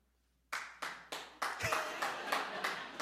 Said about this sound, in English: By applause, who wants to have super speed like the Flash?